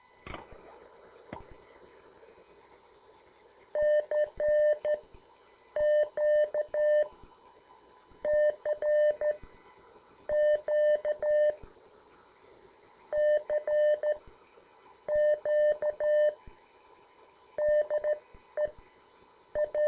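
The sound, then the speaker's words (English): Morse code tones play through a radio speaker and are picked up by a phone held by the speaker, a steady mid-pitched beep keyed on and off in quick rhythmic groups, separated by short pauses, over faint background hiss and no talking. “And move the phone over by the radio speaker here so it comes through.”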